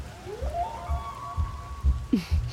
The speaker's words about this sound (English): All I want to do is sit in the road and drink the rain.